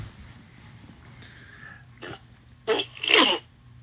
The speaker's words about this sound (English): And so one moment, I got to clear my throat again.